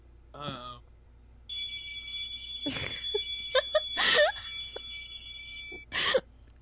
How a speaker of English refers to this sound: We could barely hear that. Yeah. Was it a school bell? It was, yeah, a school bell.